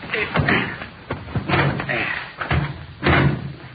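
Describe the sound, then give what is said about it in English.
A car door thuds shut with a heavy slam, surrounded by several other knocks and bumps of doors and bodywork, with faint voices murmuring in the background. “Well, somebody open the door.”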